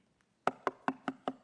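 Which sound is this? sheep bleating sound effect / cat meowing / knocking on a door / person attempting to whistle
knocking on a door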